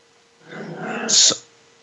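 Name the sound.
dogs growling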